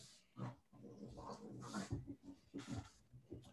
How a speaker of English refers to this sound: If I go mute, it's because my dogs are making too much noise. I like it. It sounds like hellhounds are growling at us, bro. You know, these dogs, they make a lot of noise. Yeah, I can hear them. They sound super cool.